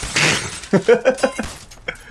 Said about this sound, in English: Giuseppe smashes one of the windows